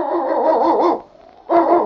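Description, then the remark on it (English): Yukon King, a husky sled dog and lead dog, barks in two loud, drawn-out, yowling bursts separated by a brief pause, with no one talking. “It's Yukon King, swiftest and strongest lead dog of the Northwest, blazing the trail for Sergeant Preston of the Northwest Mounted Police in his relentless pursuit of lawbreakers.”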